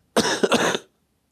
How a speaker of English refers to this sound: You see, that's only the only thing left about that sickness is that cough.